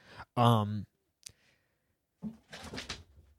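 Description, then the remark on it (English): Cats running around: a short, loud tonal cry, then a single sharp click, a pause, and a burst of scrabbling, rustling thumps that trails off. “That's what these goddamn cats running around.”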